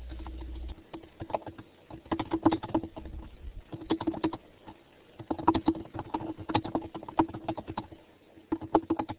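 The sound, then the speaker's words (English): Rapid, uneven typing on a computer keyboard, a steady clatter of key clicks in bursts with brief pauses, plus a low hum at the very start. “Oh, I'm typing.”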